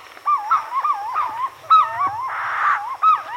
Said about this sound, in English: In a nearby tree, purple-throated fruit crows add their voices to the sunrise chorus.